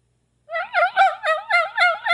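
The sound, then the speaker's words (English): An angry hen call made on a turkey call: a quick, steady run of about seven loud, raspy, high yelping notes, with no talking over it. “And we need a angry hen.”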